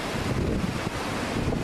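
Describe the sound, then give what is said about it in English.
Stormy wind roars steadily across the Sea of Galilee with waves surging beneath it, a loud, constant blustery rush that buffets the microphone, with no voices. “Now, what I decided to do is I pull real quickly, and let's show this, an image of an actual storm on the Sea of Galilee. Today, this is a typical storm.”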